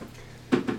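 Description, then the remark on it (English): A chair creaks and rustles as someone shifts their weight, three short bursts of movement after a brief quiet moment, with no talking. “While you hear me shift in my chair.”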